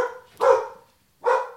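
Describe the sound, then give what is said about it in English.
A dog barks twice, two sharp, loud woofs separated by a short pause, with a faint tail of a previous bark at the start. “My dog's going to bark and it's going to just throw everything off.”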